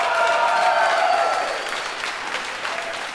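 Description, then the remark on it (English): An audience breaks into steady applause, clapping if they have seen the film Equilibrium; dense clapping from many hands that starts strong and gradually thins out over a few seconds, with a faint murmur of voices underneath. “Applaud if you've seen Equilibrium.”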